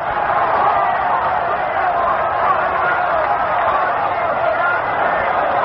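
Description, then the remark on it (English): A huge crowd at Yankee Stadium roars continuously during a Notre Dame versus Army football game as Army calls a timeout, a dense, steady wall of many voices that stays loud and unbroken throughout, with no single voice standing out. “Listen to this crowd in the Yankee Stadium.”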